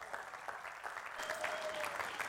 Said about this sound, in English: Why don't we give her a round of applause?